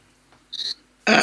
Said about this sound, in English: excuse me, sorry, clearing my throat.